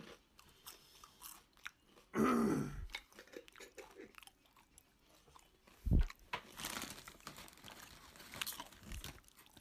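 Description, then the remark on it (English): Crisp crunching of food being chewed, with irregular bursts of crackly bites and a couple of louder chomps, continuing steadily over about ten seconds with no talking. “I'm gonna have to cut all of that. It's just crunch noises.”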